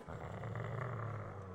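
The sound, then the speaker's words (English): A dog, Timmy, growls low and steadily for a second and a half, a continuous rumbling snarl with no talking over it. “I'm afraid if you can't control your dog, you're going to have to...”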